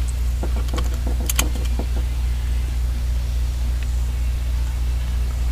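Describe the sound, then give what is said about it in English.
A steady, low engine drone from a turbocharged SUV driving in a video game, continuous and fairly loud, with a brief cluster of light clicks near the start and no talking. “So, actually, this SUV doesn't go as fast. It does have a turbo in it, but it doesn't go as fast.”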